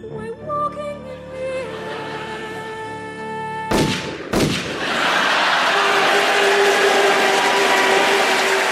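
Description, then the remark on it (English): A tonal, music-like passage gives way to two sharp, loud shotgun blasts about half a second apart, followed by a sustained harsh rushing roar with a steady tone running through it. “I didn't know you had a shotgun and good taste.”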